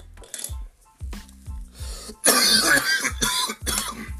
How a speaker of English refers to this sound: Can you believe that I'm still coughing off that one? I don't know why. I won't get that Kingpin one again, probably. But that shit's fucking harsh. That one's fucking harsh, bro.